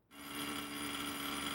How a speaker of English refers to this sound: Oh, there's that doorbell. I guess some of the Halloweeners are still out.